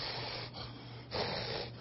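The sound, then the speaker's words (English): A voice imitates heavy, exhausted panting: a few loud, rough breaths in quick succession, with no words spoken. “And by the time I hauled about 13 of those up there, I think I understood a little bit of the meaning of the word panting after the water.”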